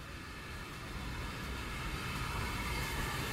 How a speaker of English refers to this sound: And here comes the down train into the station. Tender first.